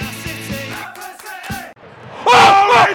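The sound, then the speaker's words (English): A lone voice shouts from a stadium crowd in a few ragged, strained bursts, with the loudest, highest-pitched yell near the end over a faint crowd murmur. “Sound a lone voice from the crowd.”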